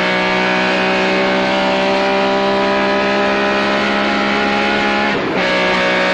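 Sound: car engine accelerating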